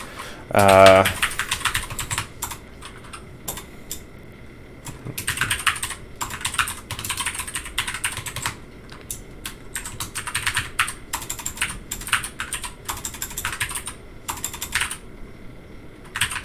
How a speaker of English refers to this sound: Alright, you see... I'm just going to start typing out some names here.